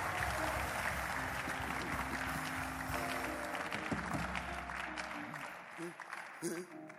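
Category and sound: crowd, audience clapping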